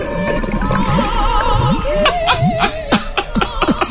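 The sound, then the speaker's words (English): Underwater farting bubbles gurgle and burble continuously, with quick rising bloops and wobbly tones, growing into a burst of sharp pops and glugs toward the end. “So when you start to feel sad or depressed, load butt farting underwater.”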